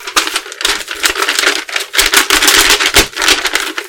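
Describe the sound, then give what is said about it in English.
Loud rustling and crinkling of a paper being handled and unfolded, with dense crackly bursts and brief pauses over a few seconds, no voices. “It's a paper.”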